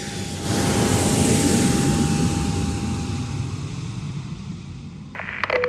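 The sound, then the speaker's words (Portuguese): A loud, steady roar of airplane engines and rushing air as a plane lands at Lisbon airport, swelling in after a brief quiet start, holding a broad rumble with a faint thin tone, then a few sharp clunks near the end. “Senhores passageiros, acabamos de aterrar no aeroporto de Lisboa.”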